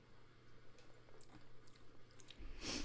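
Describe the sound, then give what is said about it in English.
Soft, wet mouth sounds of someone licking their lips while tasting a drink, a series of quick moist clicks and squishes building into a louder, sharper smack at the end, with no talking. “It's like tasting. Licking my lips.”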